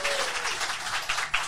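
A crowd applauds steadily, dense overlapping claps forming a bright, continuous wash of sound with a few sharper accents near the end.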